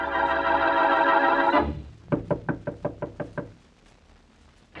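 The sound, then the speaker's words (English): A sustained musical tone cuts off, then Boston Blackie raps on Mary Wesley's door about eight times in a quick, steady run of sharp knocks, followed by quiet. “With him, as he knocks on Mary Wesley's door, is the dead man's sister.”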